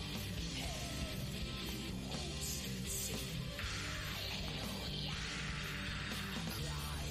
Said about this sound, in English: A couple of these screams I'm very proud of. The one I'm probably most proud of is coming up, this one.